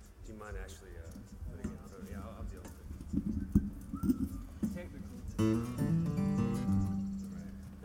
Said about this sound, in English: Bird mating thing going on back here somewhere. Get a little less bird in my monitor, please. We do have a bird's nest back there. It's supposed to be good luck.